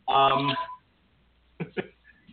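A telephone beeps loudly with a steady electronic tone lasting under a second, then two short clipped bursts follow after a brief pause.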